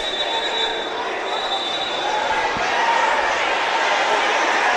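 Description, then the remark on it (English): Voices yell smack talk over a steady, echoing crowd roar in a gymnasium during a basketball game between James Clemens and Bob Jones, with players egging on the crowd. Sustained loud throughout, with a single low thump partway through. “We got some smack talk going on.”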